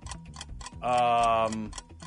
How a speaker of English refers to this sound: Stress there. Timer running out almost. Because of the timer!